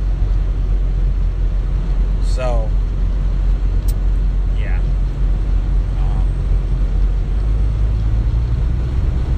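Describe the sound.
Steady low engine rumble and road noise fill the cab of a truck being driven, a constant droning hum with a man briefly speaking over it.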